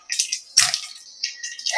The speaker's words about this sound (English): use this hole actually to drain some of the water out. So there we go. And I'm just going to press down on the film here. Out comes the water.